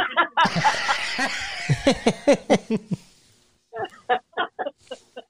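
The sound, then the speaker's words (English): A person imitates a chicken, making a quick series of loud clucking sounds, pausing briefly, then trailing off into a few more clipped clucks. “did you grow up on a chicken farm?”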